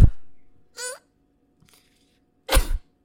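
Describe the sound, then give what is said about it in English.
A person imitates crying: a brief, high quavering whimper, a pause, then a loud, harsh, breathy sob that sounds almost like a cough. No one speaks. “Can you give us your best crying noises?”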